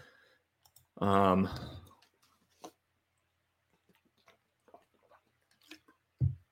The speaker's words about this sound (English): Excuse me. Get a drink of water.